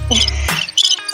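Crickets chirp in quick, shrill pulses over a brief stretch, fairly loud, with a low hum underneath at the start and no voices.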